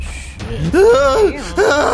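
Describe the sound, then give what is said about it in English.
Two drawn-out voiced moans of pain from wounded fighters lying on the ground in a tabletop role-playing game scene, the first swelling and falling in pitch, the second shorter and rising, fairly loud with no words. “You hear various moans and screams behind you,”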